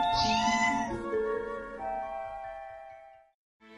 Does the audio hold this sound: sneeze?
no